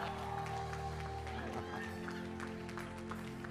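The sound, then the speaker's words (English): An audience claps steadily throughout, a dense, continuous patter of many hands, with sustained musical chords playing underneath and a faint murmur of crowd voices. “Can you give yourselves a round of applause?”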